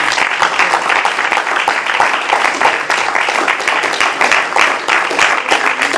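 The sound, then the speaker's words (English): A large crowd at a church gathering claps and applauds steadily and loudly, a dense wash of many hands for several seconds without letting up. “You all should have just absolutely Come clapped.”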